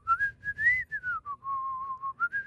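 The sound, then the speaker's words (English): Someone whistles a short melody, a clear single tone sliding between higher and lower pitches in a few phrases, with faint low rumble beneath and no talking. “Okay, give me another whistling tutorial there for just a second.”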